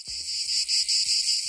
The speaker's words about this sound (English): Yeah. Cicadas. Cicadas. Mm-hmm. Every single year, we say this is the year of the cicada.